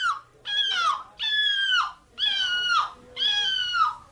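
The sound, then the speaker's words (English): A person in a seagull impression competition imitates a seagull: four loud, shrill, wailing cries in steady succession, each drawn out and dropping in pitch at the end, with brief pauses between them and no talking. “then they would try to do their impression of a seagull.”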